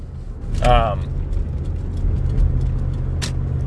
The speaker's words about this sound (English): People accelerating into a red light.